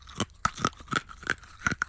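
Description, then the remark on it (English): Crunching of a hard mint being chewed, with about eight sharp, brittle cracks in an uneven rhythm over two seconds and no talking. “Should we have a little chew one more time?”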